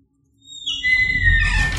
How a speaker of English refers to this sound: Oh, no. Just the sound of a stone sarcophagus closing. Yeah, we don't want that.